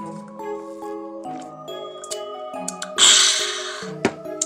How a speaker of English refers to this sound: Sorry, I had to take a deep gulp of the tea.